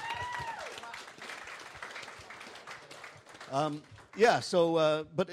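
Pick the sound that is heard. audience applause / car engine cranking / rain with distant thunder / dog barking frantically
audience applause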